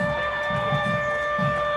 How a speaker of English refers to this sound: Now, and Chester, you hear the cyclone warning siren.